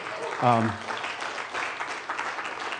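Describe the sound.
A church audience applauds their pastor marking four years as pastor, in a steady, dense patter of many clapping hands, with a short voiced cheer rising above it near the start.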